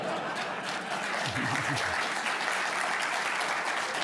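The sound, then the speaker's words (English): Steady audience applause fills the whole stretch, a dense, even clatter of many hands clapping at once, with a brief low voice murmuring underneath partway through. “I was going to ask you to raise your hand if you agreed, but the applause seems to...”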